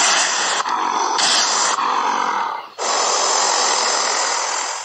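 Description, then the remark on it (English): A honey badger's harsh, raspy, low rumbling roar sustained for nearly five seconds, broken by three brief pauses like quick breaths, loud and noisy throughout, with no talking over it. “What sound does a honey badger make? Here's a honey badger.”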